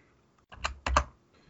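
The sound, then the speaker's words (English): Typing on a computer keyboard while looking something up: a short cluster of sharp key clicks, two quick bursts within about half a second, with no voices. “Sorry if you hear the typing.”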